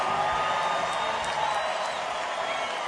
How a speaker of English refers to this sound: Yes, y'all were in tune. Give yourselves a big round of applause for being in tune.